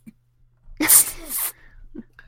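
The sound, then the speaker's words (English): A person imitates a stifled, held-in sneeze: a sharp, breathy burst with a hissing, squeezed release lasting under a second, loud, with quiet breaths before and after. “Just make that sound you do when you're holding in a sneeze.”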